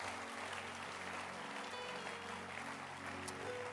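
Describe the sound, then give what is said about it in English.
An audience claps steadily for several seconds, a dense, even wash of many hands with no pauses, loud and sustained throughout with a faint murmur of voices beneath. “Clap your hands again.”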